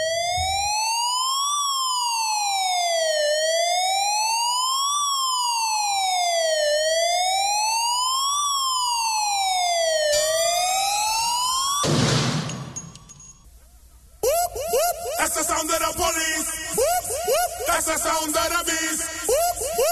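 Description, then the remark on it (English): A loud police siren wails in smooth rising and falling sweeps for about ten seconds, then gives way to a noisy burst and a busy clatter of other sounds. No one speaks. “Tonight, the crackdown on siren impunity.”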